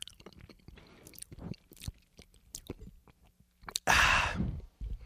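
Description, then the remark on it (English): Chewing boba with irregular wet clicks and crunches, quiet gaps between bites, then a louder, longer crunching burst near the end; no one speaks. “I'm going to finish chewing.”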